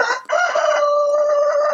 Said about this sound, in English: You got a rooster in the background while we're podcasting. Yeah. Are you actually got a farm up there or what? Yeah, I've got a little 10-acre hobby farm.